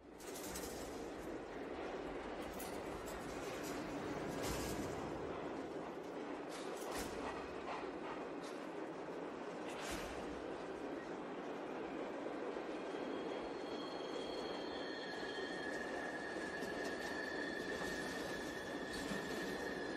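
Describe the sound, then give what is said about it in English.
A train rumbles steadily along its rails at night, wheels grinding and clattering, with sustained high-pitched squeals of metal on metal rising in the second half. “But anyway, you see him this night on the train and this happens and you figure out a lot of things really fast.”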